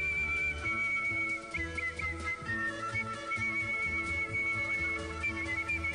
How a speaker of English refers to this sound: sounds like a flute or a piccolo, but it's actually world champion whistler